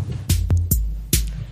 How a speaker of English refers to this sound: All right, let's start the heartbeat music.